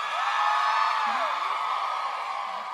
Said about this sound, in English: Applaud if you know what this is. Or if you don't, or if you're that one over there, just scream. This is the Red Lion Pub.